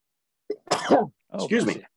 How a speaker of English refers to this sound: Thank you. I sneezed with my eyes open. I'm a tough dude.